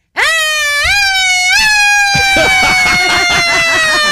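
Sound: voice imitating a siren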